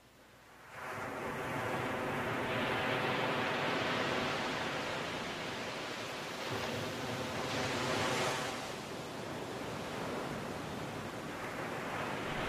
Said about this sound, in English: Enjoy the soothing sound of the ocean in the background and experience a relief from anxiety.